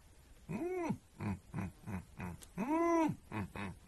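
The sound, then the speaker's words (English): A person at a gathering around a fire imitates a hippo call: two long, loud, rising-and-falling honking bellows, each followed by a series of rhythmic, lower grunting pulses, with no words spoken. “I can do a hippo.”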